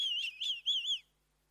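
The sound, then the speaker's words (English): A warbling, high-pitched whistle in two wavering bursts over about a second, apparently a person's attempt at imitating a cricket's chirp, followed by silence. “Is that a cricket?”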